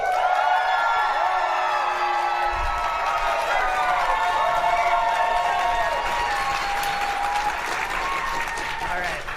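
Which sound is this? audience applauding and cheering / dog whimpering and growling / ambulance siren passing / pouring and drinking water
audience applauding and cheering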